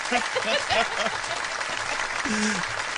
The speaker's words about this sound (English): I even have an applause for that.